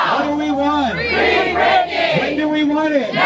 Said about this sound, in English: Got some cheering going on.